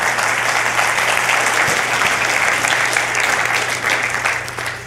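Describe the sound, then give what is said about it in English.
A crowd applauds for God at the end of a sermon, steadily for about five seconds, a dense wash of many hands clapping at full volume that begins to fade slightly toward the end, with a low steady hum underneath. “Give God a clap.”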